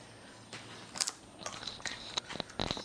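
A crisp bite into a raw, ivory-colored vegetable cut into wedges, followed by a quick series of sharp crunching chews with brief pauses between them. No one speaks.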